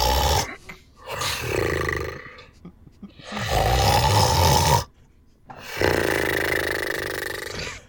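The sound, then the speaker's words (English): Loud, harsh snoring from a man, a sound effect of a sleeping ticket man, three long rasping breaths separated by brief pauses, aggressive with a rough, almost roaring texture, no talking. “The ticket man snoring sound effect.”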